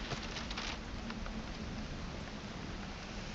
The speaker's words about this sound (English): But it sounds like there's a storm rolling in. In fact, in the distance, you can see and hear some lightning and thunder. This is going to be a wet ride.